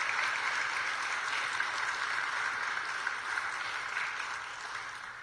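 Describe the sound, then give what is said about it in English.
A crowd claps together to thank speakers for sharing, a dense, steady wash of applause with no break, keeping an even level for about five seconds before easing off slightly at the end. “Can we give a round of applause and thank them for sharing?”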